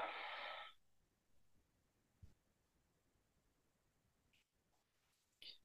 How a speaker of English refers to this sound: Let's do just like a count of four and then we'll release. And let's just do two of those. And listeners, please join in. Okay, ready? Okay, breathing in. And then breathing out.